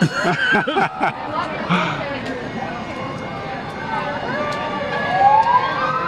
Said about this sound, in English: And as you can hear, the fire trucks are coming. Oh, yep. Yep. Hear that, or it's the cops, and they're trying to get us out of here.